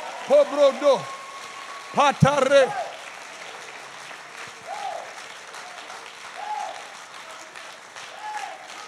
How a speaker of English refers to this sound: Give the Lord a great hand clap all over this place.